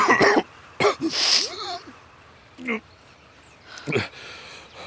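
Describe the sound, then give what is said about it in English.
A person coughing up blood gives several harsh, wet coughs in short bursts with pauses between them, fairly loud, one followed by a strained throat-clearing rasp. “Coughing up blood again”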